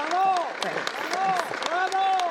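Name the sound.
applause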